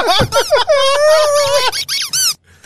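A rubber duck squeaks loudly several times: quick warbling squeals, then one long, steady drawn-out squeak, followed by a few shorter rising and falling squeaks before it stops.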